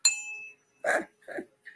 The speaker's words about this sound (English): I like to ding the wind chimes.